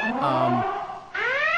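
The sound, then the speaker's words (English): A siren sound effect, used as a spoiler-alert sound effect, plays on its own: a loud, buzzy wailing tone slides slowly downward, dips briefly, then snaps back up and begins climbing again. “We need to get a siren for that.”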